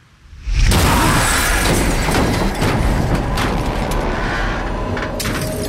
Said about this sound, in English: Metal screams and ice shatters, louder and more violent than anything you have ever heard before. And suddenly the car, your meager shield against the terror stalking you, is simply gone.